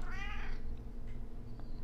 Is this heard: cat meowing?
yes